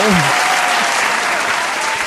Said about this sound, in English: Clapping a little too loud. No, I'm just kidding.